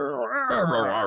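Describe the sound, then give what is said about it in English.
A voice imitates the roar of the Carnosaur dinosaur from a movie: a short, strained, growling cry about a second long, rising in pitch and then breaking into a rough, loud rasp. “Oh, man, you hear? Roar.”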